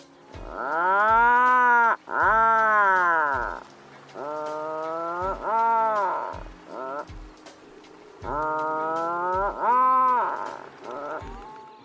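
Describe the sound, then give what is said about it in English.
An Atlantic puffin calling: loud, low groaning notes that rise and fall, delivered in three stuttering bouts of several drawn-out moans, with no talking. “Lastly, the Atlantic puffin sounds like it's trying so hard to laugh, but just can't quite make it up to speed.”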